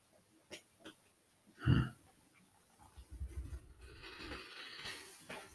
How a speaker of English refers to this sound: The cough in the middle of all that wasn't me, it was Benji, but he's fine.